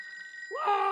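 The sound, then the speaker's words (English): A telephone rings: a thin, steady high tone gives way to a louder, richer ringing tone that swoops up and holds, clear, with no one speaking. “Where they pull the little execution thing, and then they get the phone call from the governor.”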